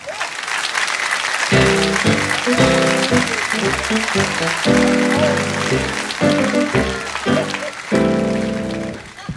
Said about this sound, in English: For those of you who applauded, thank you very much. For those of you who didn't, thank you for holding your applause to the very end.